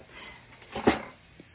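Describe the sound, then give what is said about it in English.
A short snuffling burst from Dobby, a blind 17-year-old dog, drinking water, one wet snort rising out of a quiet background, followed by a faint click near the end. “All right, let me give him some water real quick.”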